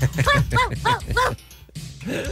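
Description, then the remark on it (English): A voice imitates a dog barking: four quick, evenly spaced barks, fairly loud, followed by a brief pause and a softer vocal sound. “She opened the front door, got down on all fours, and started barking at the police dog.”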